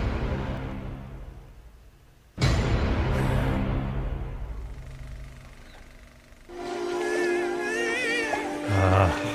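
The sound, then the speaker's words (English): Orca whale calls: high, wavering whistles and harmonic squeals rise and bend over a steady watery hiss, following a sudden loud burst of rushing noise that slowly fades. “You know, as everyone recognizes that as the sound orca whales make.”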